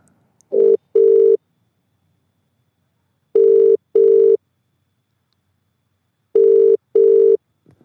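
A phone ringback tone heard from the caller's end as an outgoing call is placed: three steady double-burst rings spaced a few seconds apart, clear, with silence between them and no voices.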